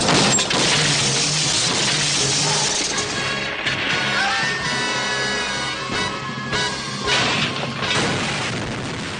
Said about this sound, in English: they wait for the bad guys to pass them before swinging around and rear-ending them off a cliff. The car explodes on the rocks below.